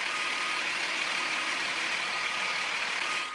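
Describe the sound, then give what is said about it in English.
A big semi truck engine drones steadily as it backs in, a continuous, fairly loud hissing rumble that holds for a few seconds with no voices. “The semi's got to back it in because it's so big.”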